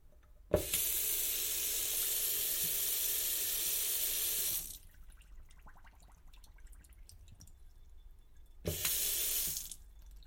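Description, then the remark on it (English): A tap gushes steadily into a kitchen sink for about four seconds, shuts off to quiet dripping and small splashes, then runs again in a short loud burst. “There is a kitchen sink.”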